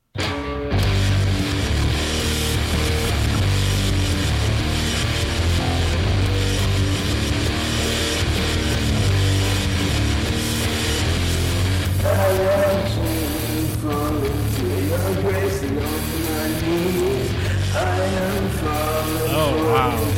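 A loud, dense song with a booming, muddy low end and cluttered mix; a sung vocal line rises out of the wash in the second half, struggling to cut through.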